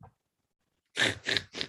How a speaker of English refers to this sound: Oh, we got a dog up here.